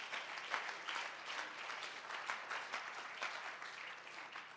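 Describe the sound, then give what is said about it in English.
A church audience claps their hands together in sustained applause as praise to God, a dense crackle of many overlapping claps holding steady in loudness for several seconds with no voices on top. “Why don't you give God a hand clap of praise right now?”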